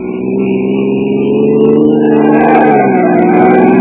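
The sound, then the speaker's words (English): A car engine roars loudly and continuously as the vehicle speeds through the streets, its revving pitch climbing and then dipping slightly near the end. No voices are heard. “tearing through the streets with a killer at whom every cop in town was itching to get a shot”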